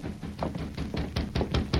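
Rapid, insistent knocking on a door: a steady run of about seven or eight hard raps, evenly spaced, growing slightly louder toward the end, with no voices.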